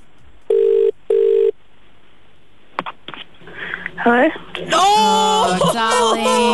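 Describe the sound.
A telephone rings twice in a quick electronic double burst, clear and fairly loud, followed by a click and then voices talking.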